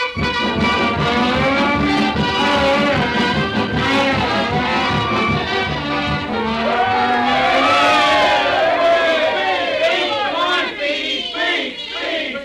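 A large crowd at a railroad station, where the whole town has turned out to see someone off, murmurs and cheers continuously, with overlapping voices, whoops and shouts forming a dense, steady wall of noise that swells slightly toward the middle before easing.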